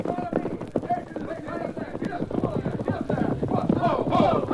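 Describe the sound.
Rapid clip-clop of horses' hooves galloping away in a steady pounding rhythm, fairly loud, with shouting voices and commotion mixed underneath, the noise swelling slightly toward the end.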